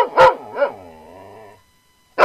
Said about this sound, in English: I will tell you that dog that was barking is not a mixed breed dog.